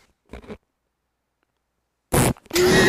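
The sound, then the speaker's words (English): A child blows a loud, buzzy mouth-fart raspberry, after a short soft sputter, two wet, spluttering bursts, the last one longer and vibrating. “you know you're not going to do the fart sound.”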